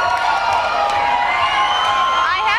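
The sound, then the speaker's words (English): A loud crowd shouts and cheers continuously, a dense roar of many voices with high whoops rising above it, steady and unbroken throughout, drowning out a woman trying to read them a bedtime story. “And the crowd is not having it.”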